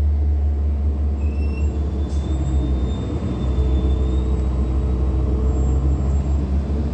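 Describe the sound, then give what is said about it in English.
A steady low engine rumble and road drone fill the space, with faint high whines and rattles, heard while seated inside a moving public bus. No one speaks. “That's why the entity is keeping a light source directly over me where I'm seated on the bus, right over my head.”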